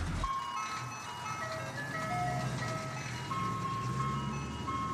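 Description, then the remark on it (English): A tinny ice cream truck jingle plays from the truck's roof-mounted loudspeaker as the truck drives off up the street, its bright repeating melody running steadily over a low engine rumble, continuous throughout. “Then the truck was driving off, the ice cream truck jingle cracking cheerfully from its roof-mounted speaker.”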